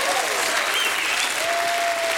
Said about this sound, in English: Do you hear me? Give God a hand clap if he ever cleans you up.